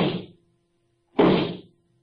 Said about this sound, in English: Maybe the shots weren't for me.